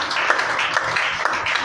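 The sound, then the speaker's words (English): A church audience claps together during a morning service to celebrate Jesus, a dense, steady patter of many hands forming a continuous wash of applause with no voices, holding at an even, fairly loud level throughout. “Can we celebrate Jesus with a clap this morning?”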